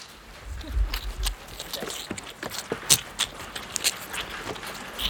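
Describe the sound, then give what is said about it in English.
Three just bottle-fed calves scamper back and forth around a covered pen with a metal roof while rain spatters it, their hooves striking the ground in quick, irregular clatters and thuds. A low rumble opens the scene, and the steps keep shifting in pace. “Will watches Cal run back and forth with the baby cows we've just fed”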